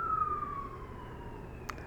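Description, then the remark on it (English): An emergency siren wails outside, its steady tone sliding slowly downward as the vehicle passes, over a low rumble of traffic. “Sirens.”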